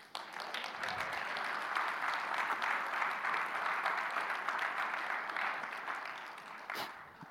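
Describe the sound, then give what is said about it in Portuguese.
An audience applauds Jesus, breaking into sustained applause, a dense wash of many hands clapping at steady loudness for several seconds before thinning slightly near the end. “Por que não aplaude a Jesus?”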